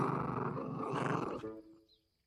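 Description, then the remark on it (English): A deep, rough growl from an imposing dog with powerful jaws, loud, rumbling steadily for about a second and a half before trailing off into quiet. No one speaks. “The dog, an imposing presence with its powerful jaws, two perfectly evolved pincers capable of crushing a human leg, one of the limbs upon which a person stands, growled.”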